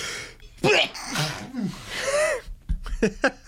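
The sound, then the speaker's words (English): A loud sneeze with a sharp gasping intake before the explosive burst, followed by a few short breathy sounds and sniffs. “That was one hell of a sneeze.”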